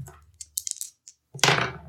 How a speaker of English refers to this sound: And now we're going to do the fulfill vow move. So you're going to roll your challenge dice.